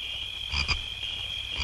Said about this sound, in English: Apparently, they're going to be a crickets after that joke.